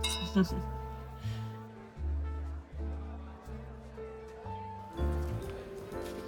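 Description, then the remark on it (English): A quick, bright clink of glasses in a toast rings out once near the start, then fades under a low, steady background hum with faint murmuring voices. “Cheers to that. Cheers.”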